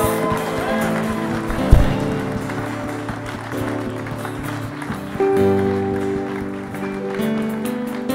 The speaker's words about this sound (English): You're very courageous. We want to honor you. Let's give them a clap, church. Woo!